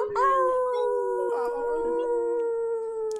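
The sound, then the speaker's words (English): Several people, some on a Zoom call, imitate wolf howls together toward the moon, holding long, steady overlapping tones that waver slightly, fairly loud, sustained for a few seconds without pause. “A couple more rounds of wolf howl for everybody here.”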